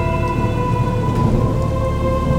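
Steady, dense patter of heavy hail over a continuous low rumble of thunder, with a faint sustained tonal hum underneath and no voices.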